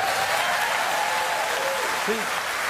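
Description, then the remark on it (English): A large crowd applauds continuously at mention of an album cover, a dense wash of clapping, with a faint voice or tone briefly rising above it near the end. “See, even the cover gets applause.”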